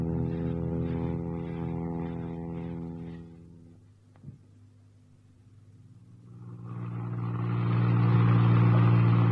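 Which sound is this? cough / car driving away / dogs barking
car driving away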